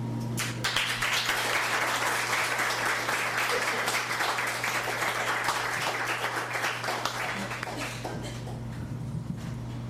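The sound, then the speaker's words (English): A crowd applauds steadily after a poetry reading, dense clapping at an even level for about ten seconds before easing slightly near the end, with a low steady hum underneath. “And as we give Ann Graham another round of applause,”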